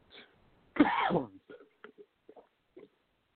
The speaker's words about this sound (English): Excuse me while I clear my throat. Had a little bit of a coughing fit just out of nowhere before the show. So if I sound a little hoarse, I do apologize.